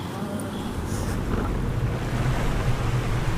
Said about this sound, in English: I was on the water taxi, crossing Elliott Bay from downtown to West Seattle